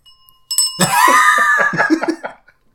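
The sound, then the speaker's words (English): A small hand bell is rung loud, with a single clear strike followed by a rapid, jangling burst of repeated rings that fades out after about two seconds. “You can break my bell.”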